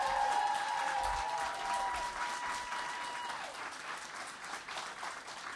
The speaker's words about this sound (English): Guys, start clapping for ….